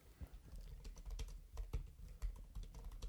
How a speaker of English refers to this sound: Typing away. Okay, here we go.